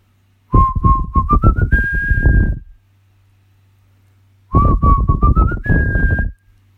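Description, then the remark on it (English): A breathy, pure-toned magic flute plays a calming tune meant to calm birds: two short phrases, each starting steady and climbing upward to a held higher note, separated by a few seconds of quiet, with no talking. “So Lulu played the magic calming tune that she learned from them.”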